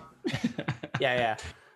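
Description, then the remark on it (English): A quick series of short, throaty coughs in a row, followed by a longer, strained voiced hack at the end, fairly loud. “I'm going to cough.”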